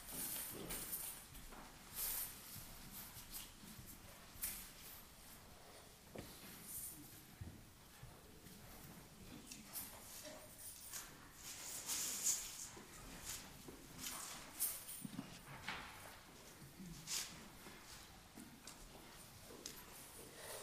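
A hammer strikes the wooden door of the cathedral at Wittenberg again and again, each hit a sharp, hollow knock in an uneven rhythm, fairly faint against a steady background hiss.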